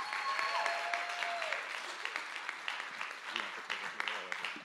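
A church audience applauds steadily as a woman comes up to preach at a morning service, a dense wash of many hands clapping at an even level throughout, with a few brief whistled tones rising over it near the start.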